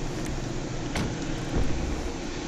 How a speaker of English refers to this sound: Alright, park my car inside.